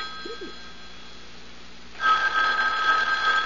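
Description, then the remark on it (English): A telephone bell starts ringing about halfway through, a loud, steady metallic trill, following a quiet stretch of room hiss. “aren't you going to answer it? Answer? The phone.”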